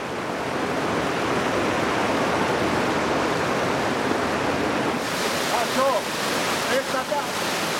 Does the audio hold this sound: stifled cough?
no